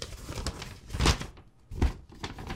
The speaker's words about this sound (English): Another letter. Oh, letter inside a letter. Do you guys like the noise of the ripping of the paper?